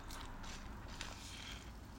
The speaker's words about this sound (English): Red Bull sipping ASMR.